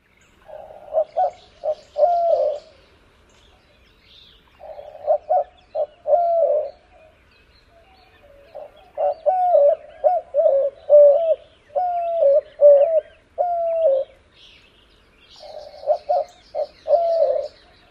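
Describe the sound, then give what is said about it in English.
A dove coos in clear, repeated phrases of several soft hooting notes each, with short pauses between groups, heard alone with no talking. “I think it also sounds like it's trying to say something, but can't quite remember what it's trying to say.”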